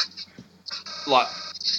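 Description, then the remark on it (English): A voice mimics the squealing feedback of a guitar's flat, hidden, non-wax-potted pickup plugged into a bass amp: a nasal, whining howl that swells and bends upward in pitch for under two seconds. “it was squealing and howling, and it's like no.”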